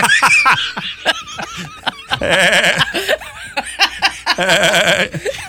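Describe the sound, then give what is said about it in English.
A person imitates a billy goat with two drawn-out, wavering bleats, each a couple of seconds long and loud, separated by short snickering laughter and breathy sounds. “Your billy goat sounds like Seth Rogen.”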